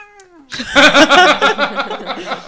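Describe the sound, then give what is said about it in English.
A cat meows loudly and insistently, starting with a thin falling cry, then breaking into a long, strained, wavering yowl that pulses for about two seconds. “Ugh, the cat. So loud. Such a loud cat.”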